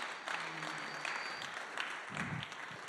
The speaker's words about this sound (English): You can clap. It's all right. It's a safe place to.